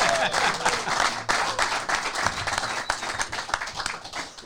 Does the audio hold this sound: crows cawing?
no